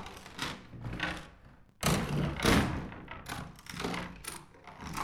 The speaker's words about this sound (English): unlocked yet another door. How many doors do you have?